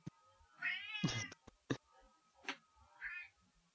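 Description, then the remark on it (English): A cat named Ziggy, already fed, lets out loud, insistent meows: a long wavering cry followed by a harsh, raspy yowl, then a shorter call a couple of seconds later, with a few sharp clicks in between. “She's just screaming for the fun of it.”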